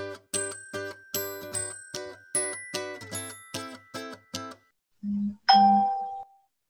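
A new phone rings with a rapid electronic ringtone, about a dozen bright, evenly spaced chiming pulses, then a short low buzz and one final sustained tone. It is clear, with no voices.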